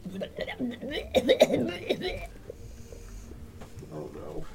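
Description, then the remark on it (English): A voice imitates a fit of coughing and spluttering for the role-play character Mardi, who cannot talk and is struggling, with choked, raspy bursts building to a loud peak before trailing off into quieter, strained sounds. “So Mardi starts to cough and splutter.”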